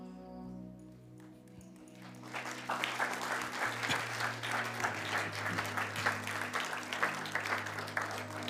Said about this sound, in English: Clapping. If you keep clapping, you will encourage more people to come. Continue à acclamer.